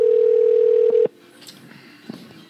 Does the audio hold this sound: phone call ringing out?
yes